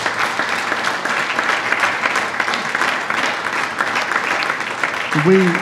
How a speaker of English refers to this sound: So, yeah, let's give Nicky a round of applause.